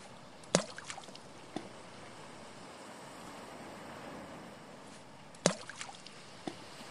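A tied-up wooden rowboat on water: steady lapping wash with a sharp hollow wooden knock, then fainter clunks, and the same pattern about five seconds later. No voices.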